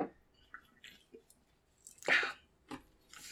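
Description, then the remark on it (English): Someone sips a Dr Pepper soda, with a few short, wet mouth sounds and one louder slurp partway through, quiet between sips and no talking. “Drink some water. I got it. I got it.”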